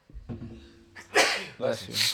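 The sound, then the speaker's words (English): A forceful sneeze: a brief voiced build-up, then a sharp breathy burst and a second hissing release right after, loud. “Bless you. Allergies also going crazy today.”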